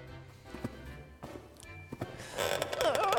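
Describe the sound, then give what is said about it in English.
A few slow, soft footsteps thud at a steady pace as people sneak quietly up or down wooden stairs at night, followed by a louder stretch where a wavering, creaky groan rises as the third step creaks. “The third step creaks a little bit, okay?”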